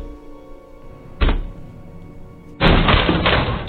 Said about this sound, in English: Stand back, everyone! O'Malley, help me break down the door!